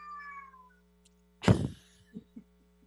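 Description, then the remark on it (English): A cat lets out a drawn-out, falling meow, then a louder, harsher burst follows, trailed by a few soft short sounds, with no one talking. “Okay, look, is your kitty visiting us?”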